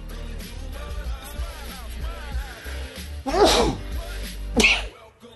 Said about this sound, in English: That's something more than a sneeze is afoot.